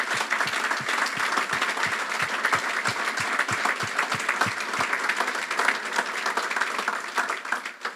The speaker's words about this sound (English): Is there any veterans, police officers, firefighters, sheriffs? Can you guys please stand up? Can we please give these guys a round of applause?